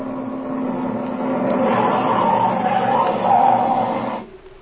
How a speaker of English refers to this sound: Hey, there comes a car now